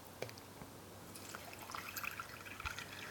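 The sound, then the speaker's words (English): Soda water is poured into a glass of crushed ice, starting with a few drips, then building into a soft, steady fizzing pour with crackling bubbles. It is fairly quiet, with no talking. “And then you add some sparkling water or soda water.”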